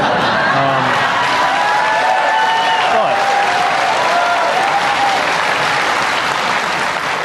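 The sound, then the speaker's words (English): A large audience claps loudly and steadily throughout for Pete Buttigieg, a dense wash of applause with a few scattered cheers and whoops rising over it. “Having won huge applause twice, Buttigieg then pivoted into actual bread and butter issues like wages and healthcare, drawing a serious distinction between Republicans and Democrats.”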